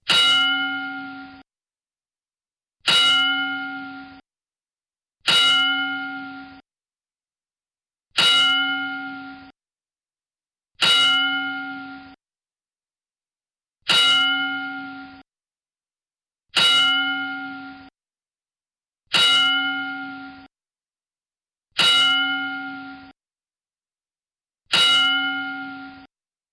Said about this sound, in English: we will take a quick moment to give a 10-bell salute to Pedro Morales